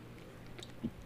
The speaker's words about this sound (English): I'll take a sip of water with everybody if you guys want to take a shot. One, two, three, go!